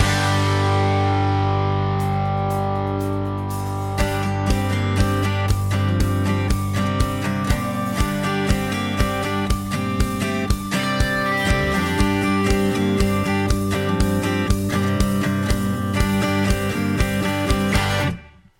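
A loud rock song with distorted guitars, opening on sustained chords before driving drums kick in around four seconds and pound steadily to an abrupt stop near the end.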